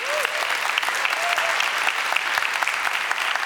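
A crowd claps steadily in a dense, even wash of applause for the person who worked on new booklets, with a faint whistle-like tone rising briefly near the start and no speech.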